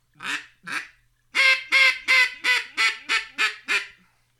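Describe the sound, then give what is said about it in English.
A hen mallard duck call being blown: two separate quacks, a short pause, then a loud, rhythmic run of about eight quacks that taper off at the end, with no talking. “I mean, that's a hen mallard call, baby.”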